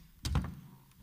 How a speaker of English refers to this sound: First, yeah, you can stand in front of the door. I'm going to back my door up a little bit.